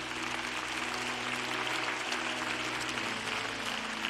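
A crowd gives a quick round of applause after a prayer, steady for several seconds, a dense wash of many hands clapping at even loudness, with a low sustained musical hum underneath.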